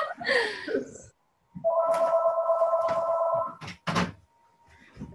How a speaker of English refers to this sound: hold on 1 second, the phone is ringing.